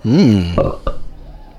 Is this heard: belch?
yes